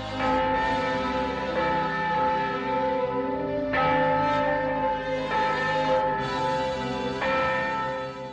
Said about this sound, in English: And the nun crosses herself and rings the bell, and Scotty walks out of the bell tower onto that balcony and looks down.